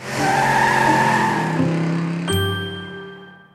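A car roars past loud, its engine whine and rushing tire noise filling the first couple of seconds, then a bright chime-like ding rings out and slowly fades.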